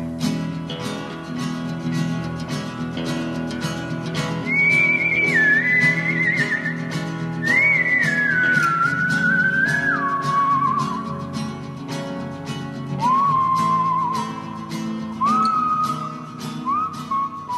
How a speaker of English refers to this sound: Everybody recognize that music? That's our theme music. Can any of you whistle our theme music? We bet you can.